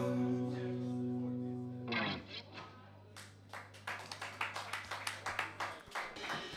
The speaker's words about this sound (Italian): E questo è l'applauso del volume.